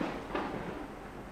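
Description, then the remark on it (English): A low, steady rumble of distant thunder rolls on without a break, with a slight swell early on and no voices. “In the distance, thunder rumbles.”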